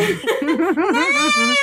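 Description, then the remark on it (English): A cat lets out a long, warbling meow, its pitch wobbling up and down before stretching into a sustained, higher-pitched wail. No other sounds are heard. “I love that cat.”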